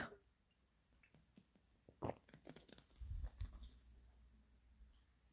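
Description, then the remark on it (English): Sipping of coffee: soft wet mouth clicks and a slurp, then a few low, muffled gulps as it's swallowed, with no talking. “Let me drink again because coffee, what else do I have?”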